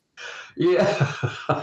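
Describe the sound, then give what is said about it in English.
A sneeze: a breathy intake of air, then a loud voiced burst followed by a couple of shorter, choppy exhalations. “God bless you.”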